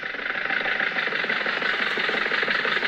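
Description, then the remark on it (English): A steady, low-revving car engine hums along evenly at slow speed as the car follows another car through a crowded drive-in theater, with a continuous mid-pitched drone and faint mechanical rattle, no voices present. “Well, why don't you follow that car in front of you?”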